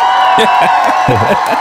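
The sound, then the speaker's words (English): At a beer tasting, a crowd applauds steadily as a barbecue chef from Hate Mondays is introduced, with loud cheers and whoops rising over the clapping for a brief burst; shouting voices stand out through the noise. “Round of applause.”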